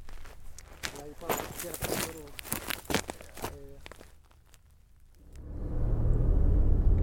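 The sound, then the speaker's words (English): A person talks briefly, then after a short lull a car's low, steady rumble of engine and road noise swells up and carries on loudly as the car drives back across the Kayenta coal mine in the Black Mesa region. “As we head back across the mine in Osif's car”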